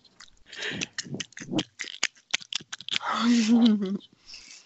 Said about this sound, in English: Hey, let me do a mukbang really quick. Okay. ASMR. Love that crunch. I really don't. It's making me cringe.